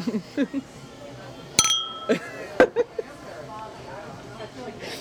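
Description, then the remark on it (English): Glasses clink together with a bright, ringing tone that lingers briefly, followed a second later by a second sharper clink, with soft murmured voices before and after. “Okay, gotta clink.”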